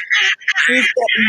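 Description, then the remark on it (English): A person imitates a duck with a few loud, nasal, buzzy quacks in quick succession. “Quack, quack.”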